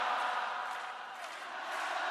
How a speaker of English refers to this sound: Oh my god. Everyone's going nuts. Oh my god, the crowd.